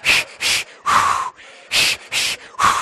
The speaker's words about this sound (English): 7 minutes in, I am suffering. Okay, I'm now rhythm breathing. I'm using my rhythm breathing technique that I learned for labor, right? Two short, one long.